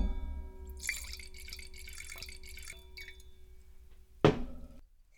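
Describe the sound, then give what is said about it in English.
Wine from Muscat of Hamburg crossed with the hybrid Villard Blanc glugs and splashes as it is poured into a glass in several uneven bursts, followed by a sharp clink near the end, moderately loud with no talking. “So let me pour you some of this and I'll describe what I can smell and taste.”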